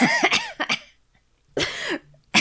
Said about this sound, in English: That cough really bought me some time to finish chewing.